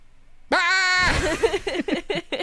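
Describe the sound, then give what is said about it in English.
A person imitates a goat, giving one loud, wavering goat-like bleat lasting about half a second, then breaks into a burst of rhythmic laughter. “That's my impression of a goat.”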